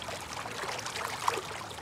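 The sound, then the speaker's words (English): Meltwater from the melting Greenland Ice Sheet runs steadily across the ice, a continuous trickling and gurgling stream with no break, moderately quiet, with no voices. “when I was there in that space, I hear water flowing, I'm thinking, this is the ice cap melting”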